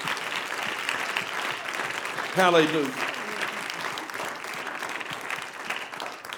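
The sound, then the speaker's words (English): A church audience applauds the church's ministry with steady, dense hand clapping throughout, and a single voice calls out briefly over the clapping partway through. “Why don't we give them a hand clap tonight?”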